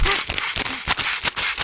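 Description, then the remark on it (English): Short, strained gasps for breath mixed with sharp, crackling rustles of a snack bag sucked in and out in quick bursts. A person with the bag over their face mimics a scene by actress Jane Levy pretending to struggle to breathe inside a plastic bag. “she has the plastic bag over her face and she's pretending that she's struggling to breathe”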